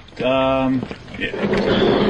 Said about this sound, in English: Take the noisy chair. I love how the wheels on these chairs just go round and round. They're very noisy on the wooden floor.